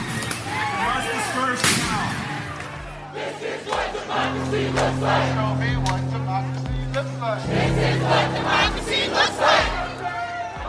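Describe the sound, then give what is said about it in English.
A large protest crowd in Seattle shouts and chants in overlapping voices, loud, with a steady low hum beneath and occasional sharp bangs of police stun grenades cutting through the roar. “In Seattle, police used stun grenades to try and break up a crowd after officers said that they were injured by people throwing rocks and bottles.”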